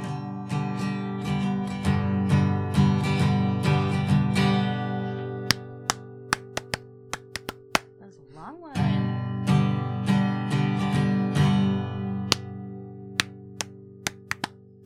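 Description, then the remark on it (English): Sharp hand claps and foot stomps land in a steady rhythm over a sustained, tonal musical backing of a play-along rhythm song, with a short swooping tone partway through. “We clapped our hands and we stomped our feet.”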